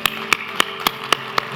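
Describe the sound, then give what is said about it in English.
An audience claps together to applaud the day in thanksgiving to God, six sharp, evenly spaced claps in steady unison at a brisk pace over a faint low hum, with no voices. “Let's applaud this day, okay?”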